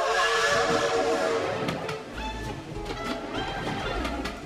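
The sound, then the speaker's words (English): A loud steam train whistle shrieks and hisses at the start at a railway station in London in 1932, then fades into a busy station ambience with escaping steam, clanks and faint bird cooing. “London, 1932, Colgate Railway Station.”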